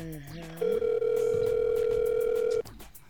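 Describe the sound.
An outgoing phone call to a DJ rings out: a single steady, mid-pitched ringback tone holds for about two seconds, loud and unbroken, after a brief moment of voice at the start.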